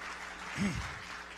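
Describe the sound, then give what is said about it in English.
An audience claps in a steady, even wash of applause throughout, with a brief voice rising above it midway before the clapping continues. “Hey, you can clap for sure.”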